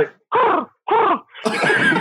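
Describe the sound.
A voice imitates a pigeon's cooing with three throaty, warbling bursts separated by short pauses, the last one longer and rougher, all fairly loud and alone without other talk.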